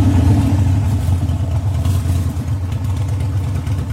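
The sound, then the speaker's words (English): A Harley motorcycle engine rumbles loudly, its deep throaty revving holding steady for a few seconds with a slight clattering edge, no voices over it. “a Harley revving its engine.”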